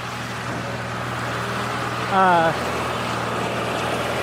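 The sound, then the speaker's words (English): Loud, steady railway rumble with a low droning hum throughout, broken midway by a brief, slightly falling tonal squeal or horn-like whine lasting about half a second. “Sorry, it's really loud right here now. There's this railway thingamajig.”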